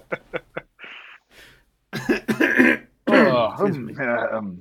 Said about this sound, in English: With this whole podcast, there's been two like fucking 30-year-old men coughing at each other.